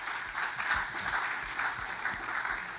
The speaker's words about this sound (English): Yeah, you can clap, please.